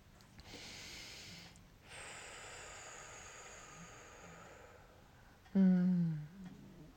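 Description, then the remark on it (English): A sleeping pet named Toulouse snores close by, drawing long, airy, raspy breaths before letting out one short, loud nasal snort; no one speaks. “He's snoring next to me, sleeping away.”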